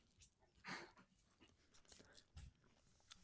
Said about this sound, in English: I'm not going to chew this into the microphone. Oh, God.